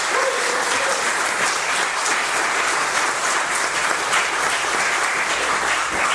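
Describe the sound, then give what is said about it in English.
An audience at Wayne Zion Lutheran Church claps to welcome an engaged couple who will be married there on August 13th. A dense wash of many hands applauds at an even, sustained loudness throughout, with no one speaking over it. “And so let's give them a warm applause.”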